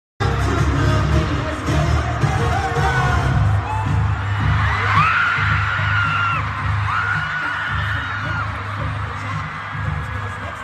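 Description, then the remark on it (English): A fan screams at a live pop concert as a guest performer is brought on stage, high shrieking voices rising over a loud, dense crowd roar and heavy thumping bass from the music, all continuous. “and I lost it and I screamed. And I will also insert a little clip of that here.”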